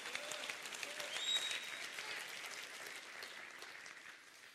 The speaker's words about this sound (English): Can you clap your hands?